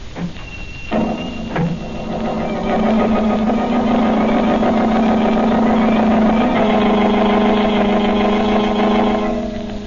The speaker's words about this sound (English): Again, the Blue Beetle rides the night wind. In his speedy motor car, he sets out in search of the murderers of Banker Ridley.